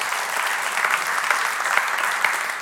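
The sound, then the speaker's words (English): An audience in a church applauds steadily for a few seconds, a dense, even wash of many hands clapping at once, moderately loud, with no voices standing out. “You guys are nice. Two claps. That's pretty good.”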